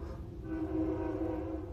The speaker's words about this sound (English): The train is beeping. That was so cool to hear.